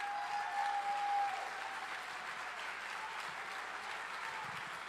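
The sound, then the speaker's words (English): An audience at a conference applauds steadily for several seconds after a speech by Dr. Jane Ruby, a dense wash of clapping that swells slightly at the start, then holds at an even level without fading out. “All right, one more time, let's hear for Dr. Jane Ruby.”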